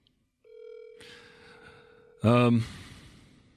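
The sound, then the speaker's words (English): A phone line rings once on an outgoing call to a friend, a steady buzzing tone lasting nearly two seconds over faint background noise, then a short, loud voice bursts in. “Yeah, we're going to listen to the ringing.”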